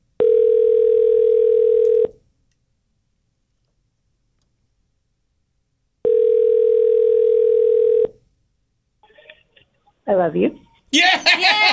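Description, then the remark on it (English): Two long, steady ringback tones, each about two seconds, separated by a pause, heard over a phone line on an outgoing call from the Rocket and Tracy show in Kansas City, before someone answers and a voice starts speaking. “Let's make a phone call.”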